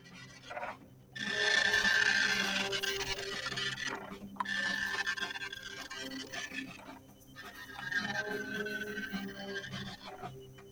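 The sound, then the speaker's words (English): A dot matrix printer prints in three long, buzzing passes, each a harsh rasp with a thin high whine running through it, separated by brief pauses. No voices are heard. “Dot matrix printer. I left dot matrix printers.”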